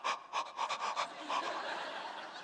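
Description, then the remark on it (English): A voice imitates rapid, sharp breaths drawn in through a snorkel by someone snorkeling with mask and fins: several quick raspy gasps in a row that blur into a longer breathy rush, fairly loud. “And then it comes time to breathe in. And I breathe in like this.”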